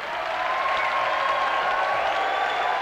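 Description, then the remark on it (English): An audience at the historic Emory Theater in Cincinnati, Ohio claps steadily for a band's performance in a dense, continuous wash of applause, with a faint sustained tone running through it and no one speaking. “Thank you, ladies and gentlemen, buckaroos and buckarettes, for that warm and generous applause.”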